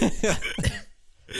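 A quick run of three fairly loud coughs, followed by a short silence before another cough starts at the very end.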